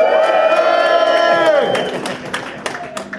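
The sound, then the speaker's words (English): A crowd, told to go nuts on a count of three, cheers loudly with sustained, overlapping high-pitched shouts and whoops that trail off after about a second and a half, leaving scattered hand claps and a few lingering voices. “All of you, give yourselves an applause.”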